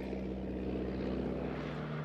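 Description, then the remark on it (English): A propeller airplane engine drones steadily and loudly, its low, throbbing hum holding constant with no voices present. “Then he goes with the plane because he's the only one who knows where his stuff is going.”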